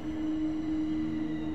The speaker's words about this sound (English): You hear the train coming and you hope that you can soon make a speedy exit.